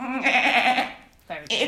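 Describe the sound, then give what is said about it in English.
A person imitates a goat, bleating a wavering nasal cry lasting most of a second, followed by a short pause and two brief, sharper bleating bursts, fairly loud. “Come on, you're the goat. Embody the goat. I'll try and be more goat-like.”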